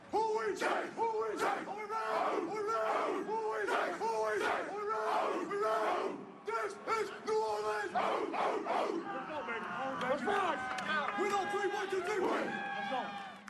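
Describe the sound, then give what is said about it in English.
A crowd booms out a Saints football call-and-response chant, answering "Who are we?" with "Saints" and "Are we ready?" with "How", in loud, rhythmic unison bursts that repeat at a steady beat, then gives way to longer, sustained yells and cheers. “When I say who are we, you say Saints. When I say are we ready, you say how.”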